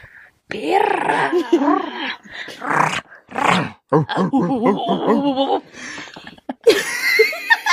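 A dog growls and barks in a run of loud bursts separated by short pauses, the calls rising and falling in pitch, ending with a rougher, noisier outburst.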